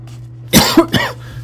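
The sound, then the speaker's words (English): A short burst of two or three fake, forced, throaty coughs, fairly loud, over a steady low hum, with no talking. “That's the fake cough I was talking about.”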